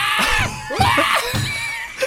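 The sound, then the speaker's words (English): A person shrieks in imitation of a screaming monkey, a couple of loud, harsh, wavering high-pitched bursts over about two seconds, ending in a short squeal. “It's like a demon on a roller coaster. That's what a monkey sounds like.”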